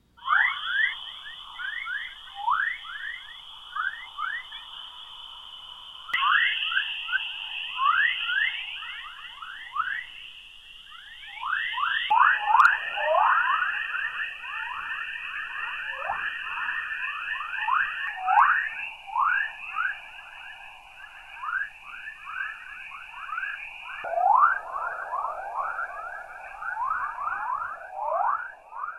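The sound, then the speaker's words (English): Chorus waves (the Dawn Chorus) around Earth, produced by electrons interacting with the planet's radiation belts: a dense, continuous swarm of rising whistling chirps, strikingly birdlike, over a steady high electronic tone, shifting in texture every few seconds with no voices. “around Earth, it's called the Dawn Chorus, or sometimes simply the chorus, or chorus waves, where electrons interacting with the radiation belts around the planet produce all kinds of chirps and tones, and it sounds remarkably like birds.”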